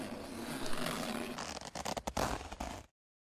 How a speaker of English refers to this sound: Do you recognize this jumpsuit? I don't know. It is similar to the ones the girls wore in Cannonball Run. Oh, I do. I named this because it has a zipper that goes all the way down.